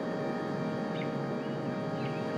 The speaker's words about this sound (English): The coquillas, of course, and the crickets, and the dogs.